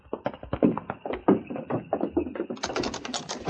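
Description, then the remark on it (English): The handle and latch of an express office's back door rattle in a quick run of sharp clicks and taps, growing brighter and busier toward the end as the unlocked door gives way. No one speaks. “Back door's probably bolted from the inside, too. We'll soon find out.”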